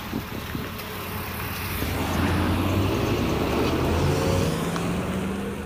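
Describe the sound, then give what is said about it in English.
Steady road traffic rumbles at a bus stop on Waterhouse Road, with a vehicle engine revving and rising in pitch as it pulls away, like a bus leaving a busy city stop. No one speaks. “Instead, she walked down the road to this bus stop on Waterhouse Road.”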